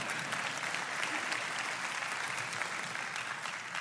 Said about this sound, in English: Oh, you could clap right there. Go ahead.